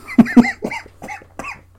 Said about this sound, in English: Sorry, I have a cough.